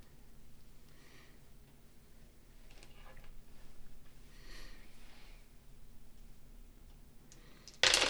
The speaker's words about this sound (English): Oh, that's shit. A lot of dice. Shit. Oh, no. Can someone pick that up for me? It went like way far back there. Like behind you.